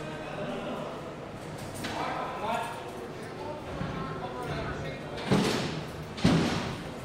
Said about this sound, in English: A long corridor, a highly polished floor, yellow light, the smell of disinfectant, cells to left and right, steel cell doors, and everywhere the wing hubbub.